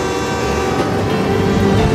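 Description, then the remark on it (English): In a scene from a Sandra Bullock film, a train rumbles by with a steady, loud mechanical roar, its horn sounding as a sustained tonal blare over the continuous rolling noise. “Mister, there's a train coming!”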